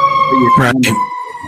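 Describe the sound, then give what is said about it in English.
A siren sounds outside on a New York City street in winter, heard through a cracked window: a steady, fairly loud wail that holds throughout, with a brief burst of voice in the middle. “I love that siren. That's perfect for our end.”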